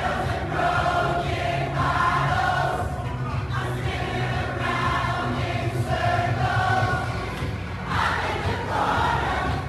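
A large crowd sings together in unison, a dense wash of many voices with rising and falling melodic phrases over a steady low rumble, loud and continuous throughout.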